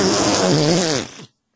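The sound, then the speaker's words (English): A loud, sputtering fart noise made with the mouth, wet and buzzy with wavering pitch, lasting just over a second before cutting off into silence. “It's just really wet sounding fart noises.”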